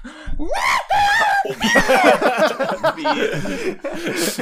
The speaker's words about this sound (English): Muffled screaming